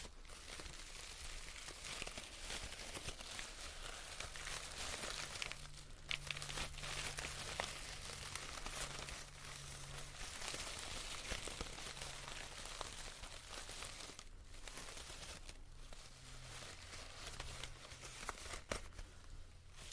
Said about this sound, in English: the Mexican Katrina headband that I used for my Day of the Dead makeup Halloween themed video, because I said it makes some lovely crunchy sounds.